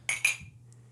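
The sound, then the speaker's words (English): Two quick, bright clinks of ceramic coffee mugs filled with wine knocking together in a toast, a fraction of a second apart, each ringing briefly before fading, with a faint low hum. “So, all right, wine out of coffee mugs. Cheers, guys. Cheers. Cheers.”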